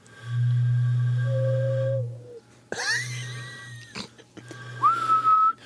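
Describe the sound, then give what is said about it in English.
A whistle is blown in several strained attempts: first a long, low droning tone lasting about two seconds, then shorter, breathy squeaks that rise and waver in pitch. “I'm getting lightheaded from trying to blow that thing.”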